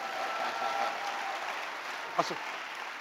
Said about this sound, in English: Y'all see his suit? Clap your hand for your pastor.